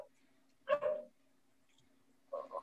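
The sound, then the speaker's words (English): Dogs bark in two short bursts, a double bark followed after a pause by another pair, soft over a steady low hum, with no talking. “Oh, fellas, I think these dogs are going to be certified dickheads for the foreseeable.”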